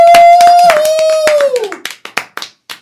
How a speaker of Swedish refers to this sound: Men nu kommer kvällens headliner. Ge en varm applåd för Simon Gärdenfors!